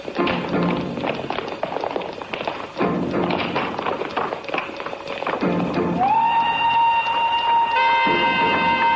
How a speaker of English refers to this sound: Hey, there's a train coming. Let's play chicken on the road.